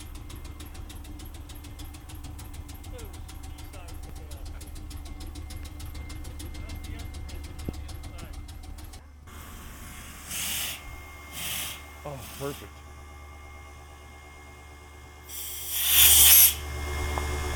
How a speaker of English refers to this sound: This is a pretty standard railroad compressor. These are our two tanks, reservoir and train air. Okay. Okay. Reservoir gets pumped up. That's the red needle. And then the train air gets pumped up and they have to equalize to release the brakes.